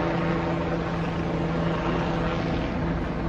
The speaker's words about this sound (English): More and more helicopters.